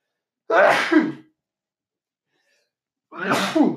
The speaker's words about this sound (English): And I'm about to sneeze.